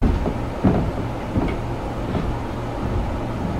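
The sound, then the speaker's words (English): Floorboards creak under a shifting weight, with a couple of short wooden groans standing out over a steady low rumble. No one speaks. “You're hearing, like, the floorboards creak underneath the weight of something.”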